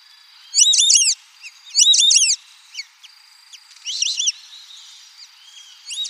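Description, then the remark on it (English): Several clear, high whistled calls from white-faced whistling ducks in Brazil come in bursts, each a quick run of rising-falling three-note whistles, with brief pauses and a faint steady whistle between. “Here are some white-faced whistling ducks in Brazil.”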